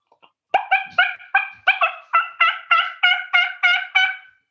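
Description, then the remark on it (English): A turkey call gobbles out a fast, steady run of about ten loud, nasal, rasping yelps, each evenly spaced, after a couple of faint clicks at the start. No one speaks. “He's busting out turkey calls over here”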